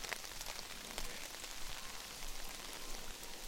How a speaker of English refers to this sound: What do you think of the rain, sweet dumps? It really is coming down. I do have an umbrella. We are not drowning. So, and this is the first time she's really been out in hard rain, so I'm really enjoying her excitement.